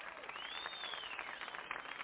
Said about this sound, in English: All right, I just love that applause, don't you?